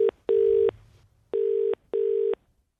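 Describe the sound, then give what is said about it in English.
Electronic telephone tones from redialing a call: a short beep followed by three longer, even beeps with brief pauses between them, loud and clear with no one talking. “Are we going to try her again? Yeah, I'll try her again.”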